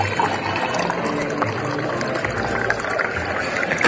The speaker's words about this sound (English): And in the cafeteria, we have big tables, small tables, single tables, family tables, and a water cooler where you can fill up on water. Let me get some water right now.